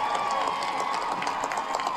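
A large rally crowd on Boston Common, Massachusetts, cheers and claps for Massachusetts Democratic Senator Elizabeth Warren in a dense, steady roar for about two seconds, with scattered sharper claps and shouts poking through the wash of noise.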